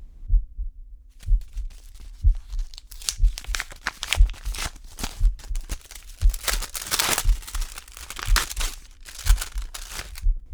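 An envelope holding school grades is torn open with loud, crinkly bursts of ripping paper, layered over a steady, low heartbeat thumping throughout. No one speaks.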